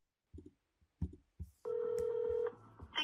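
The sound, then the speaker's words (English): A telephone call placed by Tucker Carlson to Trudeau in Canada: three short dialing blips, then a loud steady ring tone holding for nearly a second, followed by softer tones as the line connects to a media line. “This is Tucker calling Canada.”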